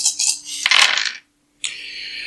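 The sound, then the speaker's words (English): A handful of dice clatters across a hard table in a bright burst of clicks for a stealth roll, falls briefly silent, then rattles steadily again. Fairly loud, with no voices. “That's a lot of dice, baby!”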